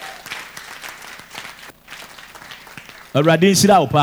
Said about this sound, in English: Receive the power and give Jesus a clap. It's a blessing.